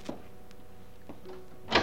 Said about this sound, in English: Sharp on the instant of 9:30, there was a fumbling at the outer door of the house. And the front door slowly opened.